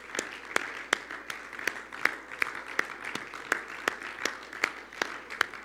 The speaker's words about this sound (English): Why don't we clap our hands to the Lord and give God a praise?